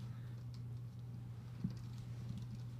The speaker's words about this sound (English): I can't see what I'm typing in. I don't even know what I'm typing.